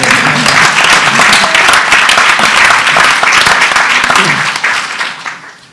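An audience at an alumni honors lunch breaks into loud, sustained applause, a dense wash of many hands clapping at once that holds steady for several seconds before tapering off at the end.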